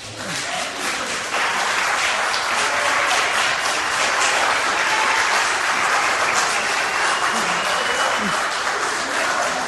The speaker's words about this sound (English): And as you can hear by the applause and cheering, that the sentiment in the room was very much like that gentleman's.